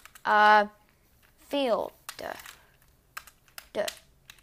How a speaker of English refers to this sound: sorry, I'm typing it out in my web browser.